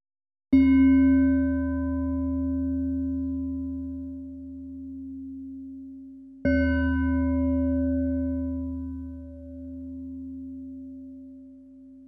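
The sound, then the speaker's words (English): Two meditation chimes struck about six seconds apart to pace breathing at 5 breaths per minute, in with one chime and out with the next; each a rich, low, harmonic tone that rings out and slowly fades, with no voices. “You'll be breathing at 5 breaths per minute, breathing in with one chime and out with the next.”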